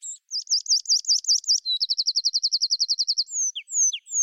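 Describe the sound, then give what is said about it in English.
Tree pipit song in three parts, recorded in an upland oak woodland: a run of repeated high, buzzy notes, then a long, fast trill of clear notes, ending in a few sliding, bouncy calls. Loud, with no voices. “you'd now have all the information you need to confirm that it's a tree pipit”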